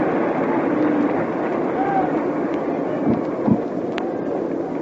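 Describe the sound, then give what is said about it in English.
A large, nearly packed baseball stadium crowd applauds Brooklyn pitcher Whitlow Wyatt in a steady, dense wash of clapping and murmuring voices, holding an even loudness throughout with a couple of brief sharper bursts near the end. “Two up, two gone, and here's a big hand of applause starting through the stadium.”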